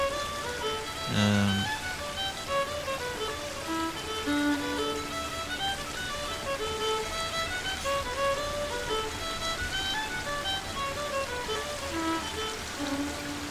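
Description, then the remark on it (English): Two small rivers come together, babbling and trickling over rocks into decent-sized pools on their way down to Coolay, a steady, even rush of water with bright bubbling notes throughout and a brief low thump near the start. No one speaks. “There's two small little rivers coming together just above us there.”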